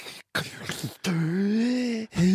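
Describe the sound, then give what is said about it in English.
A voice imitates the heavy, labored breathing of being out of shape: a few rough, breathy gasps, then two long, loud, groaning exhales with a low, wavering pitch. “And then when I'm out of shape, I breathe like this.”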